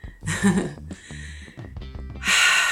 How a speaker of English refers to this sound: And imagine just breathing in. Well, you don't have to imagine, just breathe in.